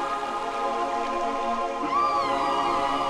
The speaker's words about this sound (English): Yes, those are dolphins you're hearing.